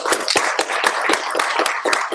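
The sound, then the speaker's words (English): A crowd applauds steadily for Graham over the Grails 3.0.4 and 2.5.1 releases, many hands clapping at once in a dense, crackling wash of sound with sharper claps poking through. No one speaks. “But anyway, so was 2.5.1, but those applause are for Graham.”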